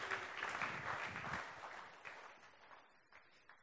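An audience applauds as a man is invited up on stage: dense, steady clapping that gradually thins out and fades, leaving a few scattered claps near the end.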